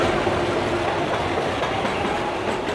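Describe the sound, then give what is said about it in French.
A metro train rumbles steadily past through a ruined open-air metro station, a loud, continuous wash of rolling noise with faint clattering from the wheels and no voices. “Nous sommes dans les ruines d'une station de métro à ciel ouvert.”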